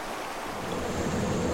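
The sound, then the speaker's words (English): A waterfall cascading 200 metres into a gorge roars in a steady, dense rush of white noise, water crashing continuously onto rocks with no pauses, loud throughout. “Water cascades 200 metres into the gorge below, where you can still find groves of red cedar and tallowwood trees.”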